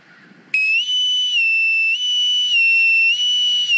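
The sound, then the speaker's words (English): A man whistles a loud, steady tune, holding long pure notes that step up and down in pitch, starting abruptly after a brief moment of faint background noise. “There's no art to the way he whistles.”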